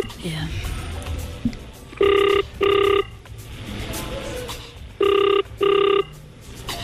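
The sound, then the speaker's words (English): A telephone rings in two double bursts, each a pair of short harmonic trills, clear and fairly loud over a low murmur of background voices. “Please answer the phone.”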